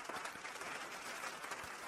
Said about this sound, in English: I thought you were going to give me a round of applause. Like, well, you wanted the... I'll give you a round of applause.